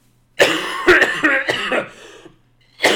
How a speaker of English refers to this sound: I'm about to cough.